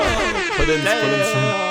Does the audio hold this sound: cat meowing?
no